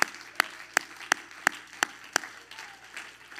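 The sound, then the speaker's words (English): A standing audience at a Pentecostal worship service claps hands together in a steady rhythmic beat, sharp synchronized claps about every third of a second, then fading into looser scattered clapping. “Would you clap your hands to Jesus?”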